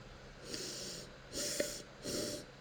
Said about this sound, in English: It's actually making me cough. That's so funny. Oh my god. The fumes of Imperial Russia.